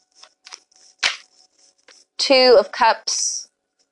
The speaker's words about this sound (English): I'm gonna shuffle the cards again.